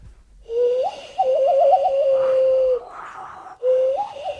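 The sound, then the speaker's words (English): A hollow, breathy whistle blown through cupped hands hoots in three sustained tones with wavering trills, pausing between them, sounding much like a dove's coo with no talking over it. “Can you whistle with your hands?”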